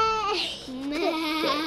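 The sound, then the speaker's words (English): A person's voice trying to imitate a laughing cow comes out as a wavering, sheep-like bleat, a quavering laugh-like cry, loud and sustained for under two seconds with no other sounds. “That's not like it. Still sounds like a sheep.”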